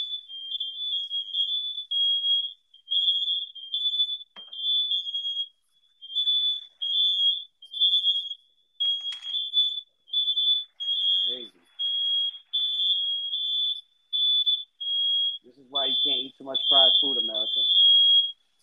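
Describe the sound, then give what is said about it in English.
A loud, shrill alarm beeps over and over in short, rapid bursts that never let up, with brief voices breaking in underneath toward the end. “Continue to say positive so we get this alarm thing to go off.”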